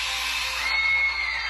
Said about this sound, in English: I did hear a bitch scream. I heard a bitch scream. Did you hear a bitch scream? I heard a bitch scream.